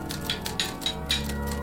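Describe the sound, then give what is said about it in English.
A typewriter clacks away on its own in the corner of a room with no one speaking, a few crisp key strikes landing in a steady, quick rhythm over a low, constant background hum. “the typewriter is”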